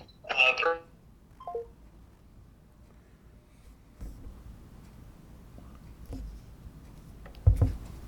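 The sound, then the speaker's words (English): A short burst of electronic telephone tones near the start as a phone call is cut off, followed by a brief beep, then quiet line hiss with faint clicks and a low thump near the end. “I got cut off.”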